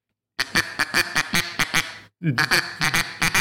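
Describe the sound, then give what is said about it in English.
A gray duck quacks loudly and repeatedly in a rapid, rhythmic series of harsh calls, pausing briefly midway before resuming the same insistent quacking. “You know, that's a gray duck, but.”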